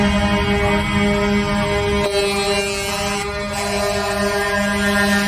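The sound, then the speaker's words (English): A chorus of truck air horns from Canadian truckers blares together without pause, overlapping droning tones forming a loud, dense, continuous wall of honking for the whole stretch. “God, they're all honking.”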